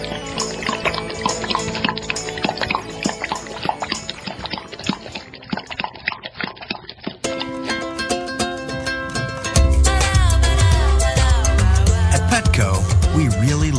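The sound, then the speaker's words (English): A dog laps up water in quick, rhythmic wet slurps for several seconds, fairly loud, before a musical jingle takes over and the lapping fades out. “We'll be right back to Win with Dogs right after this quick water break.”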